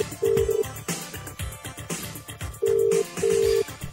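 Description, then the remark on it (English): An outgoing phone call from a withheld number rings out: steady, electronic ringback tone bursts, one early and then a pair, loud and clear over a busy, rhythmic background of music or noise. “If you sat there looking at your phone ringing, it's withheld.”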